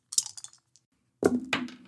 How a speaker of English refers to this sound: Whoa, sorry. Escaping dice. I hate it when they escape. All dice belong in jail. Yeah, I hope the one that escaped rolls better than the one that landed on the table.